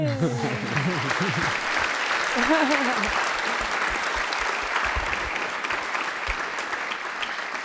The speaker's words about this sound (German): Es ist vorbei, das war der letzte Applaus.